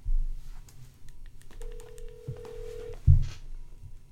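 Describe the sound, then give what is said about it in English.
Brief clicks of a phone being dialed, starting with *67, to call a Little Caesars restaurant, then a single steady ringback tone holds for over a second before cutting off with a soft thump. No one speaks. “we'll use Christian's phone. We're using Christian's phone. And we gotta do the *67. And then I gotta type in hamburger.”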